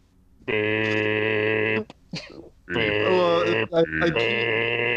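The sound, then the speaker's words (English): A voice imitates a beep with a long, steady, buzzy hummed tone, then a short breathy pause, then a second sustained tone that wavers slightly in pitch and briefly breaks. “And whenever you do the beep, it's quieter than everything.”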